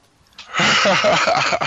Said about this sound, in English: Oh shit! Excuse me. Choked on a cough drop there.